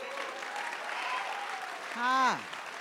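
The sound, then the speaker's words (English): A crowd at a chapel service claps in a steady, dense wash of applause, and near the end one voice lets out a loud whoop that slides down in pitch. “And you can be, that's right, go ahead and clap.”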